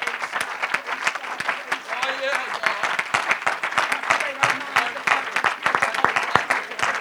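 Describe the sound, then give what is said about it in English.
A large crowd claps steadily in dense, sustained applause, a hand clap of praise to the Lord, with scattered voices calling out beneath the clapping throughout. “And why don't you give the Lord one more great hand clap of praise.”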